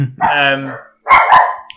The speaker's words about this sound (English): just the dogs barking.